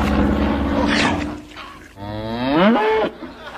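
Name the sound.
cows mooing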